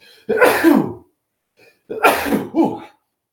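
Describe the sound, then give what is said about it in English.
Two loud sneezes about a second and a half apart, each a sharp burst with a brief breath before the second, otherwise quiet with no talking. “Sneeze coming.”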